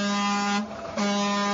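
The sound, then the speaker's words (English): Two loud, blaring car horn honks close together, the first long and the second starting after a brief break, steady and brassy with no talking. “If you can't amen, honk your horn if you're driving right now.”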